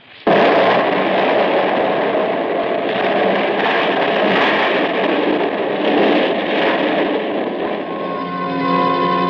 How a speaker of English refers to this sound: That explosion had ripped Tony's spaceship open, blew me out through a rip in the wall